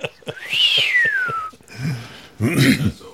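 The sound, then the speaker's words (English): A slide whistle swoops up quickly and then slides slowly back down in one continuous, clear tone, followed by a couple of rough, noisy bursts like throat clearing or laughter. “I would pay money to see you play the piano and the slide whistle at the same time.”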